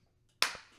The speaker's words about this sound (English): I'm gonna go ahead and clap again. That's how you line it up.